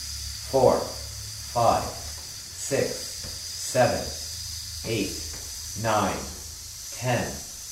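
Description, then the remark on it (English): After a deep, silent breath in, a steady, sustained hissing exhale runs unbroken through the whole stretch, a breathing exercise, while a voice counts aloud in short, evenly spaced bursts roughly once per second over it. “So take a deep, silent breath in and hiss.”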